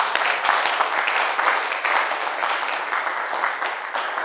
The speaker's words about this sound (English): Then clap your hands for Jesus.